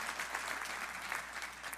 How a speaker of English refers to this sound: Come on, give our pastor another round of applause.